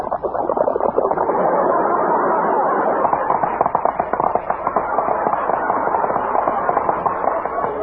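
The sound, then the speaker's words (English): A dense, continuous barrage of sharp crackles and pops as milk is poured over Snappies breakfast cereal, bursting like a string of small firecrackers, loud with no pauses throughout. “But when you pour milk over Snappies, you get action.”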